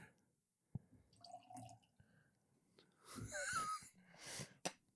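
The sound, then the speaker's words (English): A non-alcoholic spirit of the Free Spirits brand is poured into a glass in a steady gurgling stream whose pitch rises as it fills, after an earlier sharp clink and some soft handling sounds. “Okay, so this was Free Spirits that he first poured.”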